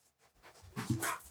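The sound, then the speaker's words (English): A dog lets out a short burst of whiny, yelping vocal sounds, building from soft panting-like noise into a brief louder whimper, with no one talking. “Now listen up, dog. Get your act in order.”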